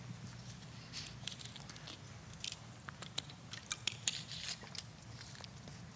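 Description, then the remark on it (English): Someone handles a water bottle and drinks, with soft plastic clicks, taps and crinkles scattered irregularly over a steady low hum. Nobody speaks, and the sounds are fairly quiet. “Can I have my water bottle?”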